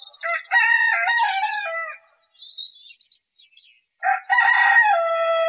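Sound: rooster crowing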